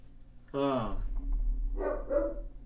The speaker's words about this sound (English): Sometimes I don't know what's going on. I wonder why my dog was barking.